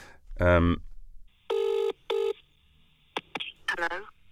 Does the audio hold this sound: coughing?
no